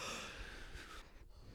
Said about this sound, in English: I mean, I just yawned.